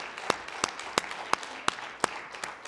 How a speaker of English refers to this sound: Come on, let's give him a hand clap of praise if you wouldn't mind, please.